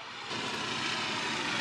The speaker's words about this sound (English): Okay, forgive the helicopter. There's a trauma in the area. Sorry.